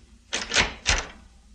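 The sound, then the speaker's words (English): The door to a press room opens in two quick, noisy bursts, a clattering latch followed by a brief rush as it swings, then fades into quiet. No one speaks. “Open the door to the press room, Comrade Kova, so that Comrade Svedek may also see.”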